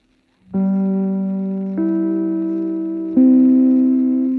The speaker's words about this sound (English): And now, Tallulah, if you'll ring your chimes. Thank you, Ed. This, darlings, is NBC, the National Broadcasting Company.